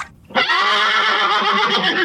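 A horse gives a loud whinny that starts abruptly after a brief pause and holds steady with a shaky, vibrating quality for nearly two seconds. No voices accompany it.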